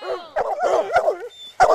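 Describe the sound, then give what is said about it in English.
Three hunting hounds in a forest, let loose on the scent of a mountain lion, barking and yelping in a quick, excited burst, several loud overlapping calls with drawn-out whining tones between sharp yips, with no one talking. “And then, finally, after the dogs snuffle across the scent of a lion, they let loose the hounds.”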